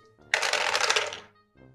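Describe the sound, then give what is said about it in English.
Dice rolled for two attack rolls clatter and rattle across a hard surface in a loud burst lasting about a second, a dense run of quick clicks that stops abruptly, landing on a 19 and a natural 20, with a faint low murmur before and after. “One is a 19 okay. on the dice. The other is a natural 20.”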